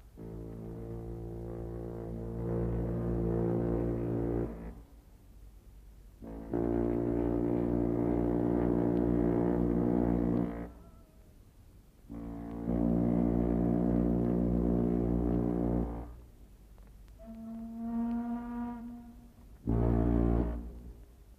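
The ocean liner America's deep twin sirens sound three long, loud, droning blasts rich in low harmonics as a ceremonial farewell while the liner weighs anchor, followed by a shorter, higher-pitched horn tone and one final brief blast.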